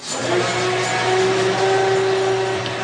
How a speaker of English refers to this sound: Yeah, I've got too much noise going on. It's a blender. We started all over again after the blender was finished.